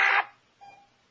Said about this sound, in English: That was like a half beep. Like that.